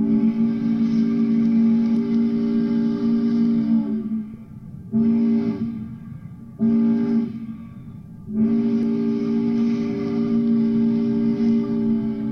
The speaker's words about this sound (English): You can come and see the gears going and then listen to some of the different calls of the whistle from the boats.